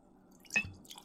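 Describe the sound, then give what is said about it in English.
A drink is poured into a glass: a quick splash of liquid with a faint glassy ring, over a quiet background hum, followed by soft trickling. “Let's fill these back up here.”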